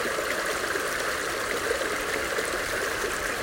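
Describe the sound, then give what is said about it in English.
A steady, continuous rush of stream water flowing, a dense bright babble with no pauses and nothing else audible over it. “Enjoy your time listening to the sounds of nature, visualizing the birds, the trees, the water, the deer passing by.”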